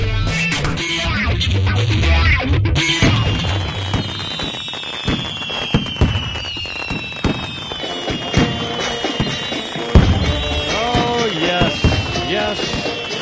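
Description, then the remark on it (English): A dense fireworks display crackles and pops continuously, with rapid bursts, thuds and whistling rockets rising and falling over a busy, noisy background for the whole stretch. “Listen to the celebration. Wow. How about that? Look at those fireworks.”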